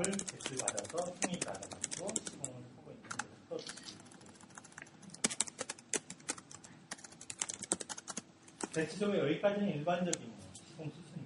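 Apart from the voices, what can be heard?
computer keyboard typing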